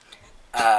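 A cat named Theodore, trying to go to sleep, makes a single abrupt, loud hiccup or retching sound, a sudden harsh burst after a brief quiet moment.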